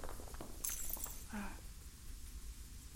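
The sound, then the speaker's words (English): A short burst of shattering glass with bright, crackling high tinkles, followed by a brief ringing note, heard faintly against a low background rumble. “Ow! A shop. Glass, I think.”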